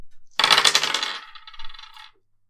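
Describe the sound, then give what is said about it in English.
A handful of dice, rolled for a mobility roll for hiding, clatter across a hard tabletop in a quick burst of bright rattling clicks. The tumbling fades into lighter skittering before settling into silence. “Okay, make a mobility roll for hiding.”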